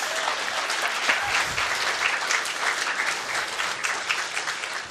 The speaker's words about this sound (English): If you've been walking with God for 25 years or more, would you stand up? Now, we can applaud these people. Go on, give them a round of applause.